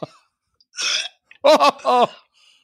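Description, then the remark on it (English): A forced, self-induced burp after drinking three cans of soda and a can of beer: a short breathy rush of air followed by two loud, croaking, gurgly belches in quick succession, with nobody speaking. “So that is the terrible sound that happens when I have to burp.”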